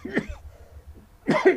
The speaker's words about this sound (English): Yes, I know, it's contagious over the sneezing on you. You're coughing on me.